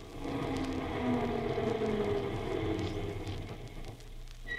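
A crowded bus's engine rumbles and whines, its low drone steady with shifting tones before easing off near the end as the bus comes to a stop to take on a passenger.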